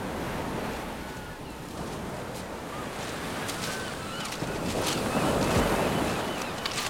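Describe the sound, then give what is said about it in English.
Ocean waves break steadily on a sandy shore at the water's edge of a bay under storm clouds, a continuous rushing surf with one wave swelling louder near the end, fairly loud, with some wind noise. “Down by the water's edge, where the breakers tumble along the sand.”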